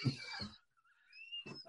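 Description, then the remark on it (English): A dog whines with a thin, high-pitched tone that wavers and slides upward for about a second, framed by brief bursts of louder, rougher sound at the start and end. “Sorry, my dog was just asking for that.”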